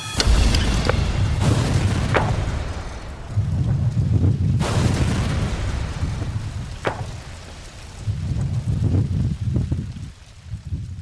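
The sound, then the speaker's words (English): A reconstructed car bomb, recreated by investigators and placed in a car, is detonated after a countdown and booms outdoors, followed by a long, deep rolling rumble with a few sharp secondary cracks and bangs as it echoes away. No one speaks. “This is all pieces from this last blast.”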